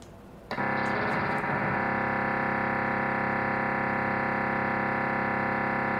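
A DMR (digital mobile radio) signal from a local repeater, tuned in on Cubic, kicks in abruptly after a half-second of quiet hiss, then holds as a loud, steady, harsh buzzing drone packed with tones until the end. No one speaks.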